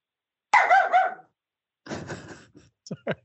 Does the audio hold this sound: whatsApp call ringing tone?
no